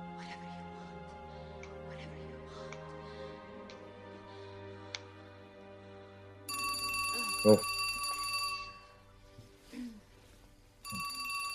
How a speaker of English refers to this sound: The phone ruins his orgasm.